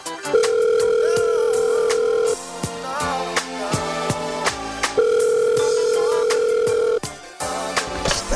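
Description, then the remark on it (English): A telephone rings for an incoming call, sounding twice as a steady electronic tone, each burst about two seconds long with a pause between, played loudly over a backing music beat. “Man, I swear, I know you ain't just called my phone praying.”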